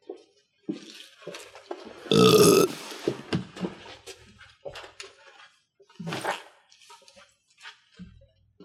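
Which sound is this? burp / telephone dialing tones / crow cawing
burp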